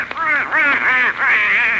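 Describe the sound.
Loud duck quacking from a duck named Herman in a raspy, nasal voice, running as three or four continuous squawking bursts that rise and fall in pitch, with no other sounds around it.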